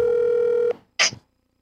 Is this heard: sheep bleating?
no